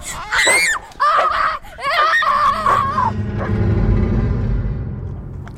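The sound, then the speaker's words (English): A dog barks in several loud bursts of sharp, high-pitched yelps over about three seconds, then a low, rumbling commotion takes over and slowly fades. “Go get him, Rufus! Nice doggy!”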